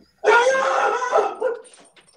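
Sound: dog barking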